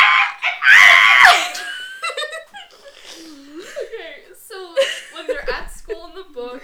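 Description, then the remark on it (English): Two people imitate the background noise of a film scene: one lets out a loud, shrill imitation scream near the start, the other follows with a string of short, yappy vocal bursts mimicking a dog barking, all fairly loud. “But in the background you can literally hear screaming and barking. Like this. You scream, I bark.”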